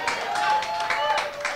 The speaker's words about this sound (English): Now, some people are clapping. You've seen the tie, and you're still clapping.